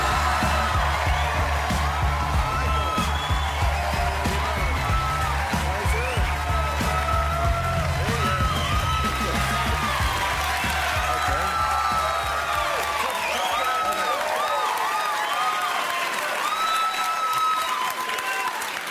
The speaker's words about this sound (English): I want this recorded. A lawyer got a standing ovation.